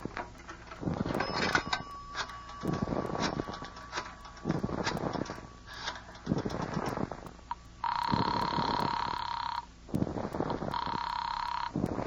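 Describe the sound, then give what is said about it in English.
A telephone bell rings in two loud, sustained bursts separated by a brief pause, following a stretch of clicks and rattling handling noises. “But other than that, it will just take a phone call.”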